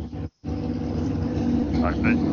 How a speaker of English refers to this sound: Do you have a garbage truck outside your house? No, what is that? Is that me? That's not me. No, that's me. Oh, it's the motorcycle.